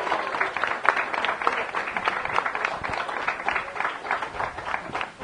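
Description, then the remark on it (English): An audience applauds steadily for several seconds for a couple, Johnny Angel, Jack Hunt and Mary Lou Hunt, being called up, a dense wash of many hands clapping at a moderate, even level with no one speaking over it. “Let's give a nice round of applause for Johnny Angel, Jack Hunt, and his wife, Mary Lou Hunt.”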